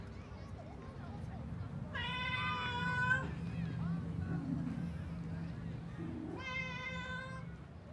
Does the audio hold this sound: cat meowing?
yes